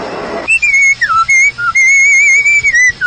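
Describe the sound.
A man whistles a bright, lilting tune, the pure tone sliding between notes in quick phrases and long held pitches, starting after a brief burst of noise.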